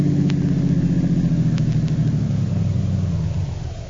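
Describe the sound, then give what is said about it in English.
A car engine rumbles at low speed as the car turns into a work yard and parks in a garage next to a truck, its pitch easing downward as it rolls to a stop and the sound fades at the end, with a few faint clicks. “Turn into the work yard and park in our garage.”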